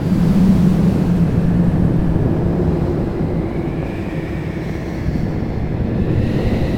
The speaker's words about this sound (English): Harmony, Scribbles, Tiger, Gemma, Jory, and Cornelius travelled to the echoing cliffs. As they walked closer, the north wind's cries grew louder.